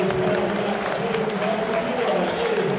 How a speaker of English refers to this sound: The away fans about as angry as I've seen them. Most of the second half, calling for Rowett to leave. Players coming over and applauding now. They're getting a reception at least. Some boos.